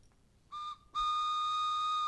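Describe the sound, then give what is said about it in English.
A train whistle gives a short blast, pauses briefly, then sounds one long, loud, steady blast of bright, high-pitched chord tones that holds to the end. “It's a train pod.”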